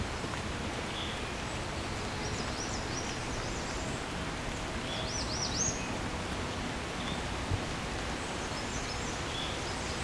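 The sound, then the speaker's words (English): A scarlet tanager sings a few short, burry phrases in an unusual song resembling the first note of a yellow-throated vireo's song, spaced across several seconds, over a steady backdrop of rustling, hissing outdoor noise. “Never heard a scarlet tanager do that before.”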